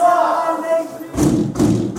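Heavy prison cell doors bang shut twice in quick succession at bang-up, as prisoners are locked behind their doors, loud, with booming echoes, after a sustained tonal whine or voice-like drone.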